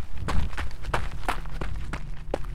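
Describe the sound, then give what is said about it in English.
Running footsteps on a forest path: about seven quick, evenly spaced footfalls, each a crunchy thud, over a steady low rumble. No one speaks. “Without a second thought, I got to my feet and ran down the path.”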